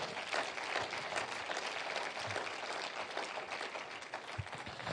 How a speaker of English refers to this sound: Why don't you give the Lord a hand clap for that?